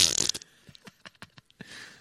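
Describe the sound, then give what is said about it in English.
A loud, mouth-made fart noise opens with a raspy blast, then breaks into a string of short sputtering pops before a final breathy burst, with no talking. “Are you farting down there?”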